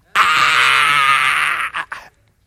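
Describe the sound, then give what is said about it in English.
A loud, sustained scream held steady for about a second and a half, then breaking off into two short ragged bursts before stopping; a single voice imitating a primal scream, with no talking. “have you heard on this one college campus that they had a primal scream?”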